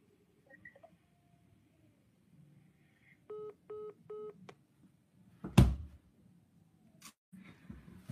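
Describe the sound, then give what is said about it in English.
Three short, evenly spaced phone keypad tones beep in steady succession as a caller punches in a phone number during a call, followed by a loud sharp clunk and a fainter click, all over a low background hum with no talking. “If you have those kind of feet, don't punch in your phone number,”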